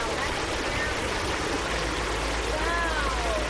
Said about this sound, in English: About 500 yards upstream from the first stop, we round a bend to the sound of rushing water. A mini waterfall gushes over a flat stretch of sand and mud.